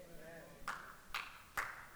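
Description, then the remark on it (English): A single listener during a sermon claps three sharp, crisp hand claps spaced about half a second apart, each with a brief bright ring, following a faint murmur of voice in an otherwise quiet, low-level recording. “Thanks for that one hand clap.”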